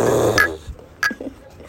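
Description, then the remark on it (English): A dog growls low and rumbling for about half a second, followed by a few short, sharper yips and snuffling sounds, with no one talking. “My dog be driving me crazy sometimes.”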